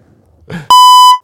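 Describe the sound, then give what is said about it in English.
A loud, harsh electronic buzzer blares once, steady and sustained for about half a second, right after a brief soft rustle, then cuts off abruptly. “We'll probably have to give it the buzzer. You know the buzzer you've got on there?”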